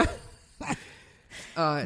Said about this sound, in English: By the way, I just want to take another moment to discuss that the dog is snoring so fucking loudly right now.